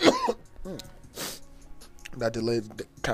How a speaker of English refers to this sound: That delayed dab cough though.